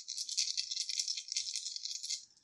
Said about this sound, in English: I love the sound of dice.